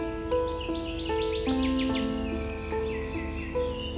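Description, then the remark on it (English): Wild birds chirp and trill in quick, bright bursts throughout at Valens Lake Conservation Area in June 2021, during the bird breeding season, layered over a soft, steady melody of sustained instrumental notes that shift pitch every half second or so. “Today we'll be listening for bird species such as black and white warbler, northern water thrush, alder and willow flycatchers, and many more.”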